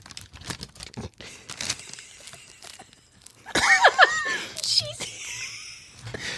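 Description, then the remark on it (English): Crackly crinkling of packaging, a steady flurry of small rustles that swells into a louder, busier crumpling burst partway through, with faint voice-like squeaks mixed in. “First, we're going to crinkle.”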